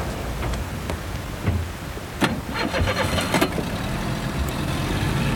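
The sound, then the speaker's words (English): A small outboard motor on a dinghy sputters to life and settles into a steady engine drone, with a few sharp mechanical bursts and clatters early on and no voices. “I love the sound of that outboard.”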